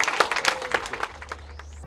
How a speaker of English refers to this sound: Ladies and gentlemen, how about a nice round of applause for Commissioner Kelly?